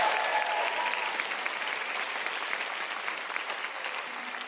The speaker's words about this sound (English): Big round of applause